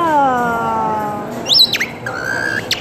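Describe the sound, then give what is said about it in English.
A blown whistle warbles through bird-like sounds: a falling harmonic tone, a few quick rising chirps, then a steady held note and a final chirp, fairly loud with no talking. “I know blow, you make it, it comes like sound. It sounds like a bird.”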